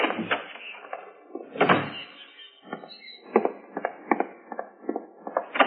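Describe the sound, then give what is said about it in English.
A connecting door is opened and then shut again, with a sweep of movement followed by a string of latch clicks and small rattles. No one speaks. “I got it all through the connecting door, Joe.”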